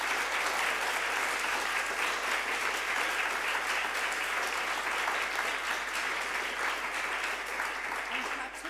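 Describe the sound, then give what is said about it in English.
Steady audience applause, a dense wash of many hands clapping at an even loudness for nearly nine seconds, tapering slightly at the very end. “And could we just give a round of applause to all our participants?”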